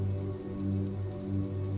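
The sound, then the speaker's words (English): Steady rain on a narrow street hisses continuously over a low, constant hum, an even wash of patter with no pauses and no voices. “He walks a gray and white wire-haired terrier that has little interest in being out in the steady rain.”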